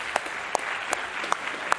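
An audience applauds a group of people in a steady, dense wash of clapping, with a few louder individual claps popping out at a regular beat. No one speaks.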